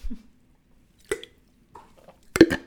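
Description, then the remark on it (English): A quick sip of a drink: a few soft wet slurping and swallowing sounds spaced apart, ending in a sharper, louder gulp, with no talking. “I have a quick sip here.”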